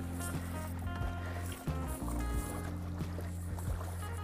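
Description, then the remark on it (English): A kayak's pedal drive churns with a loud, steady mechanical drone, strong low hum and harmonics, broken by brief clunks and shifts in pitch as the pedaling surges. The kayak moves at about 2.5 to 3 miles an hour in roughly 98-degree heat. No one speaks. “And listen how noisy this thing is.”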